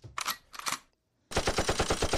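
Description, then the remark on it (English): A gunshot sound effect: two loud, sharp gunshots ring out a beat apart, then after a short silence a rapid burst of automatic gunfire rattles on steadily and loudly, with no voices. “It's like give me a gunshot, dog.”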